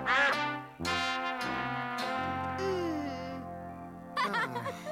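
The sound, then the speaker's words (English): A goose honks loudly, about five harsh, nasal blasts in an uneven series, with a short, fluttery burst of honking at the end. “Goose!”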